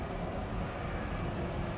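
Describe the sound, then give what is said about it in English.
A steady, low roar of an airplane passing overhead, a broad rumbling drone heaviest in the bass that holds at an even level throughout, with no voices. “So while the plane passes over, because we fly like that, a real quick 1 through 4.”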